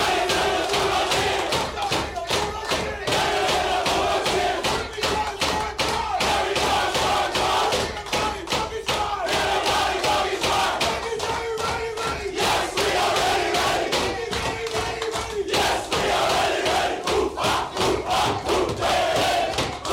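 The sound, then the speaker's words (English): The Bulldogs football team celebrating in the dressing sheds: many loud male voices shouting and chanting together with steady energy, punctuated by rhythmic thumps and claps throughout. “A lot of happy Bulldogs fans and certainly a happy Bulldogs crew in the sheds last night as we go to the break. Let's hear their celebrations.”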